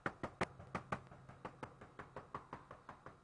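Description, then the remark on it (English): A rapid, steady run of sharp knocks, about fourteen crisp raps in a few seconds, fairly loud, with no one speaking. “You were an outsider. You were knocking...”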